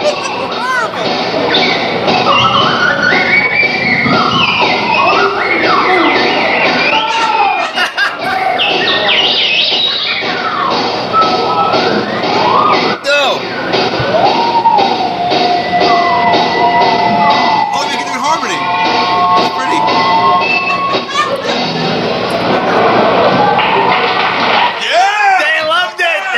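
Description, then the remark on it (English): A slide whistle trio: three slide whistles play together, trading fours, their bright, reedy tones swooping up and down in overlapping glides and wobbles. The loud, continuous three-way tune runs for the whole stretch without a pause. “We're doing a slide whistle trio.”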